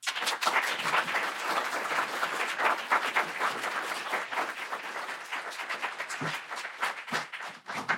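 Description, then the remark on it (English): An audience applauds steadily for several seconds to welcome the speaker, Mr. Peled. It is a dense, sustained patter of many hands clapping with no voices over it. “Peled for coming today, and let's all give him a warm welcome.”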